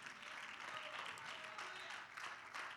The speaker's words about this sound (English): While you're being seated, why don't you clap your hands to Jesus?